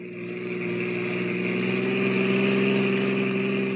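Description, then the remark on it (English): A car engine hums steadily, its low harmonic drone rising slightly in pitch as it runs, with no voices present, as a car carrying three silent people reaches the outskirts of a town. “It's about an hour later now, and a car with three very silent people in it has just reached the outskirts of the town.”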